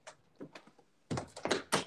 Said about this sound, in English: 1 second, I'm gonna close my door.